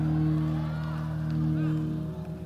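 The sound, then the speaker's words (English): An audience shouts and whoops over a steady, sustained organ-like drone, many voices rising and falling together before easing off near the end. “I can hear the Holy Ghost shouting.”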